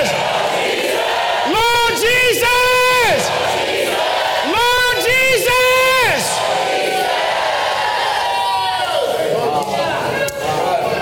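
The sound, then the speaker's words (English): A high-pitched child's voice screams two drawn-out, multi-syllable shouts of hallelujah, loud, over a steady murmur of a large crowd. “I love it when I hear children screaming hallelujah.”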